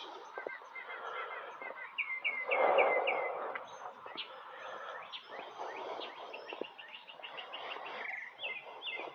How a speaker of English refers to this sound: Hear that bird?